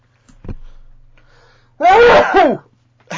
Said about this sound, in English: I've got sneeze coming.